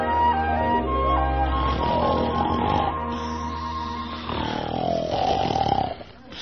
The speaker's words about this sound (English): Hey, who dat snoring? That can't all be me.